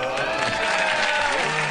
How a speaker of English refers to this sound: Huge applause break.